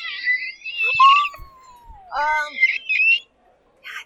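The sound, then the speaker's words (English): A bird chirps in a cellar in a series of high, whistling calls, including one long downward-gliding note and a few quick trills, clear over about four seconds. “Why would there be a bird in the cellar?”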